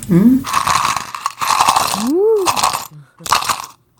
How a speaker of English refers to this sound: It's like a maraca. Yeah. Some percussion. Unfortunately, it was in a plastic cup, so it wasn't as good.